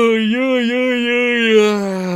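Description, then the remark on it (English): A long, drawn-out vocal yawn, fairly loud, held for about two seconds with a steady voiced tone that sags lower toward the end. “Big yawn.”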